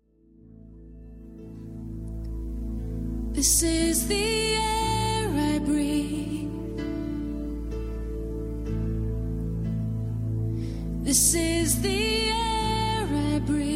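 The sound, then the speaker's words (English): A contemporary worship song played by a praise band, with sustained band backing, bass and keys, and a sung vocal melody that swells in louder bursts, steady and full throughout. “I've had enough of the sissy, pansy, cannon fodder written music you have the audacity to call worship.”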